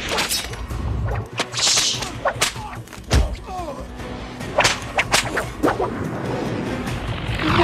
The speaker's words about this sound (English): Listen to that whip sound effect. It's so bad.